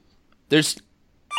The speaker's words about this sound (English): Is the hotline. red phone ringing?